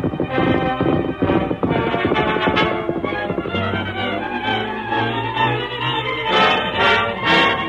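Horse hooves clip-clop at a steady trotting pace as the horse Scout is ridden to town, mixed into a dense, continuous bed of dramatic orchestral music that stays loud throughout.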